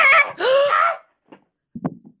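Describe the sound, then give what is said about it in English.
A woman's horrible primal scream, loud and harsh with a rising, strained pitch, lasts about a second, then gives way to a couple of dull thumps and soft shuffling as she falls to the ground. “Then she makes horrible primal scream and falls to ground.”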